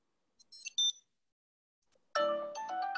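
A Tile tracker ringing a muted phone: a short high-pitched electronic chirp sequence, then a pause and a much louder, harmonically rich ringtone melody that plays on steadily. No one speaks.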